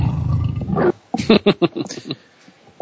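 A loud tiger roar rumbles for about a second, then breaks into a quick series of short, rhythmic growling grunts that gradually fade.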